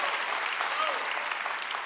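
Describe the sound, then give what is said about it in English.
An audience applauds in praise of God, a dense, steady wash of many hands clapping that holds at an even, fairly loud level for the full two seconds. “One more time, let's not give God a golf clap. Let's give him the praise that is rightly due him.”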